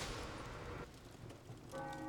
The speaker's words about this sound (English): Church bells rang out, signaling midnight mass and the beginning of Christmas Day.